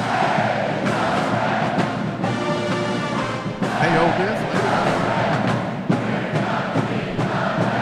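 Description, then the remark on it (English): A large crowd of fans at a press conference inside an arena yells and roars continuously, the noise echoing around the big enclosed space, with a few sharp thuds and shouts rising out of the din. “Now you can hear them yelling, so maybe the coach and all is walking in.”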